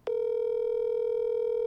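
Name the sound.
telephone dial tone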